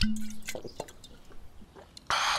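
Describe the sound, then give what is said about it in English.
Liquor being poured or drunk: a brief low hum, then scattered drips and small liquid clicks, ending in a sudden loud, rushing splash of liquid. No one speaks. “Now, how's bouts I fortify myself with the old fire water afore we's head in for a meal o' grits and lard chunks?”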